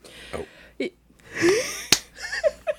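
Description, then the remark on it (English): A few sharp slaps as a man slaps both hands over his mouth, one especially crisp and loud, mixed with brief muffled vocal noises and soft rustling between them. “just slaps both hands over his mouth.”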